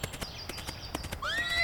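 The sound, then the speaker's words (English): A horse gallops with quick, rhythmic hoofbeats, then lets out a loud whinny that carries through the final moments as the hooves keep pounding. “Yeah, look at him go! That horse is out of its mind!”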